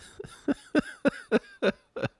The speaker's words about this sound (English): I was doing so good this morning until this coughing fit. Now I'm all sniffly and coughing. I wonder if my coughing fit caused a cold.